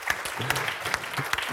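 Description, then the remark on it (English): A steady burst of audience applause, dense overlapping claps forming a continuous crackling wash at an even, moderate loudness with no voices over it. “Big round of applause.”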